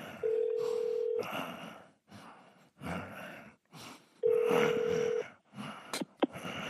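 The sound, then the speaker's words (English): A telephone line rings twice on the other end of a call while the call is being transferred to a motel operator. Each steady ringback tone lasts about a second with a pause between, over a noisy background with a sharp click near the end. “You are being transferred 41. To the operator.”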